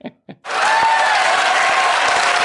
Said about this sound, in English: You'd think the Queen had arrived with that round of applause. Absolutely massive. And it's Bubble. I mean, she's the Queen. She's the only person this episode that gets that applause. Yeah. Massive, massive.